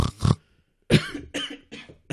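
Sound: cough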